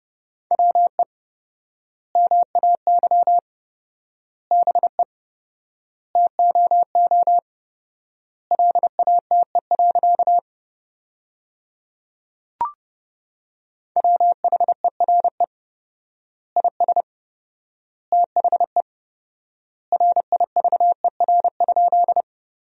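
Morse code sent at 30 words per minute with 4x word spacing, sending sentences built from the 300 most common words: a steady, mid-pitched tone keyed in rapid dots and dashes, grouped into words separated by long pauses, with one brief click partway through.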